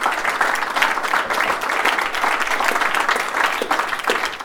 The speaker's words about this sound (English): And I really want to thank the audience for turning up. So can we have a final round of applause just to make sure that everyone's there?